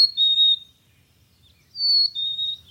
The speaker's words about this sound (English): I kept hiking, gradually sinking into the sounds around me. My footsteps clamoring on the uneven ground, a breeze sweeping through the fir needles, a chickadee calling in the distance.